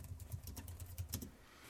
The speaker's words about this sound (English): Sorry if you hear my typing and whatnot.